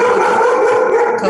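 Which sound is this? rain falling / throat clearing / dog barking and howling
dog barking and howling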